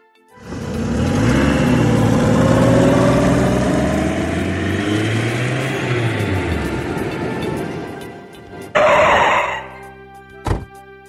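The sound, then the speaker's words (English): An Uber car's engine rumbles steadily, its low drone rising and falling in pitch, then cuts off into a short, sharp burst of noise and a brief thump near the end. “Let's get in this Uber and let's go.”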